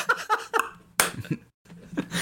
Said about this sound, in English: How does an almost jump work? Try and jump, but imagine you have magnets on your feet. I'll just give me one sec. And remember, everybody, he's naked. He's naked while he tries this. So and there's, you hear that slap?